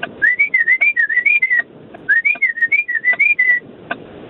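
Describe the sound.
A person whistles a short, lilting tune to magpies: two quick phrases of bouncing, wavering notes separated by a brief pause, clear and fairly loud with no talking.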